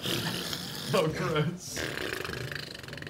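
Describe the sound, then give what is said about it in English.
A person blows a wet, sputtering raspberry with their voice, imitating a fart in one drawn-out burst of a couple of seconds, fairly loud, mimicking a dying tentacled creature deflating as a weapon is pulled out of it. “Does it make a fart noise? Yeah, kinda.”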